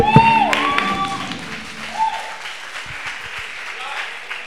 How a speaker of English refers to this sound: You praise with an instrument. You praise with a drum. You praise with a hand clap. By the way, everybody is an instrumentalist.